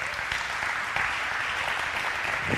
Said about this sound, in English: So if we could give Justin a round of applause.